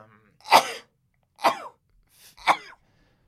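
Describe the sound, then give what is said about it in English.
Three sharp sneezes in a row, about a second apart, each a sudden loud burst with a breathy hiss that fades quickly, with no talking. “I hate sneezing.”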